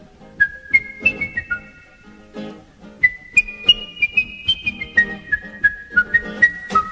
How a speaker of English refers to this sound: Not bad whistling, not bad.